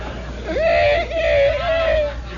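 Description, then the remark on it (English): A voice imitates a kid brother whimpering as he starts to cry: a single drawn-out, wavering high-pitched whine that rises, dips and trails off over about a second and a half, moderately loud with no words. “And immediately I hear, he's whimpering, you know.”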